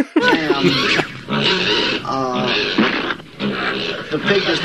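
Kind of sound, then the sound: animal, pig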